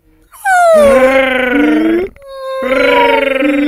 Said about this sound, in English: I brought back the tone samples from the baby sperm whales. If I could just align them here.